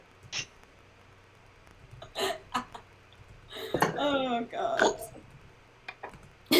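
A person snorts several times up close, short sharp nasal bursts spaced irregularly, with a stretch of breathy, laugh-like vocal sounds in the middle.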